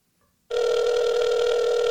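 After a brief moment of silence, a loud, steady electronic telephone ring tone starts abruptly and holds continuously to the end as a phone call is placed, with no talking.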